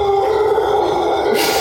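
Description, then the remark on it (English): A mother monkey in a tree, with a baby monkey nearby, lets out a loud, sustained call, a droning roar-like howl that holds steady for the whole moment, with no talking over it. “So this is a mom calling. Probably. One of the loudest animals.”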